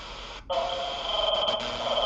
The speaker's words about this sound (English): Computer, clean up transmission. Unable to comply. High-level interference has compromised the data chain. Manual repair required.